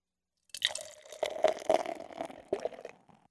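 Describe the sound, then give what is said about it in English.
A Mikkeller pils beer made with oats pours into a glass in a steady stream for about three seconds, gurgling and splashing with a few sharper glugs before trailing off. No one speaks. “Let's fucking pour this pills.”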